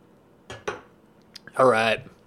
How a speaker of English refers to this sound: Take a quick sip of coffee here. Quick sip.